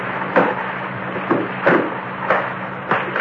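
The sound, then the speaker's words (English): A heavy safe door being opened in a dim room, with five or so muffled clunks and knocks at uneven intervals over a steady low hum, fairly quiet, no voices. “I didn't recognize it at first, but as my eyes got more used to the dimness, I discovered the door of the safe was open.”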